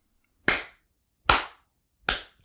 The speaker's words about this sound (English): Father Gleb comes back onto the altar, applauding loudly.